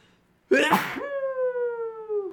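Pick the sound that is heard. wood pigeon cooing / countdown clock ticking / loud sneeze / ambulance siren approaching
loud sneeze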